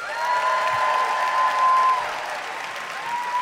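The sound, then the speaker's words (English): A live debate audience applauds steadily for a few seconds to cheer for the pro side, a dense wash of clapping with some cheering mixed in, fairly loud and sustained throughout. “All right, by applause, who cheers for the pro side?”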